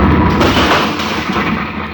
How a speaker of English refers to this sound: What happened? Who tosses a bomb at us?